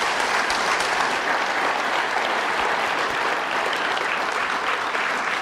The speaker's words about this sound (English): Come on, give her a hand. Bless you guys.